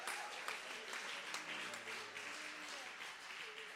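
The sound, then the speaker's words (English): A church audience applauds steadily in praise of the Lord, dense overlapping claps filling the whole stretch at a fairly even loudness, with a few voices calling out faintly underneath. “Somebody give the Lord a mighty hand.”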